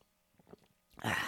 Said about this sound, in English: A little sip of a coffee.